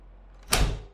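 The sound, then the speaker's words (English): A heavy warehouse door swings shut with a single solid thud and a short fading rumble, followed by a latch catching as the door auto-locks. No voices. “The door auto-locks behind you.”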